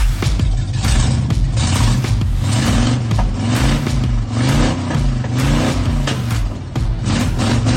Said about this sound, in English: Yeah, there you go. Colin Schrome sent that car sound in. That is his 1986 Chevy S10 with a small block Chevy V8. I love it. Nothing better than a small pickup truck with a big engine.